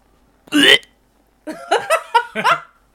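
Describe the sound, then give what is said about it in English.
A single loud, harsh gulping retch bursts out and cuts off after a moment. A short pause follows, then a run of quick, choppy vocal sounds like someone talking or laughing. “That was the same sound as that guy who swallowed the hot dog whole.”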